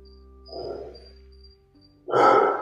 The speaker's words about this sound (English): I think, is that your dog?